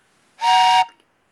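A single short, loud blast of a train whistle, a steady bright tone lasting about half a second before cutting off, with no voices.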